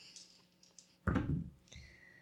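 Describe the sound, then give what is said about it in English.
Dice clatter across a hard tabletop in one quick, rattling burst during a tabletop role-playing game, followed by a few light clicks as they settle on a roll of 13. Moderately loud, with no voices. “So that's a 13. Okay. Good roll.”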